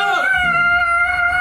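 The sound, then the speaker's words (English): A person voices a high, sustained screech, mimicking a creature's scream. The cry holds steady and loud for the whole moment, slightly wavering, with no words spoken. “The scream was fading.”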